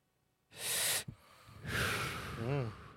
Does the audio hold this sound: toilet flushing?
no